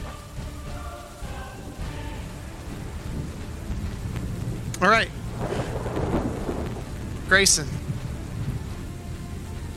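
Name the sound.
rain falling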